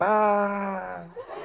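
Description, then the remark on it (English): A person imitates a sheep with one long, nasal "baa" bleat, held steady for about a second before trailing off into a fainter, breathy tail. “Ah, that's a sheep.”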